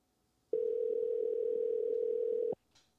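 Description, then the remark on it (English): A steady telephone dial tone hums loud for about two seconds as a caller redials after a call cut off, then cuts off abruptly, followed by a faint click. “Oh, the call cut off. Let me call back.”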